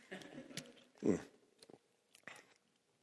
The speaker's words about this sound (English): Just going to take a sip here.